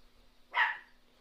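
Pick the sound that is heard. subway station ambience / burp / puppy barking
puppy barking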